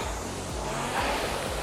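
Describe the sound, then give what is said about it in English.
A steady, breathy whoosh of a rowing machine's air flywheel spinning as someone rows at a stroke rate of 20, with a low droning hum underneath that dips in pitch about every half second. No voices. “if you're just listening to this on the podcast, then just listen to the whoosh of my flywheel.”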